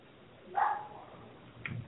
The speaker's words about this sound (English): Okay, we got a little serenade from the dog next door, but that's okay.